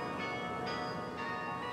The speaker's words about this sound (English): It's kind of eerie hearing the bells and walking down here and talking about them.